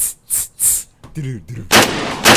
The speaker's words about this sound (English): Unnecessary gunshots.